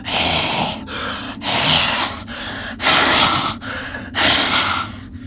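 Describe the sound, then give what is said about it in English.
A voice imitates harsh, raspy labored breathing, with about six heavy in-and-out breaths in a steady rhythm, loud, with no other talking. “you hear just outside the door of the stump, you hear raspy breathing.”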